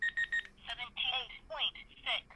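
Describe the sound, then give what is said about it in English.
Three quick, high-pitched electronic beeps in an even rhythm from a digital meat thermometer with auditory cues, its probe stuck into meat and its fast temperature button pressed, followed by a voice speaking. “So you turn it on, it says on, and then you stick it in the meat, and there's a fast temperature button that you hit, and it beeps.”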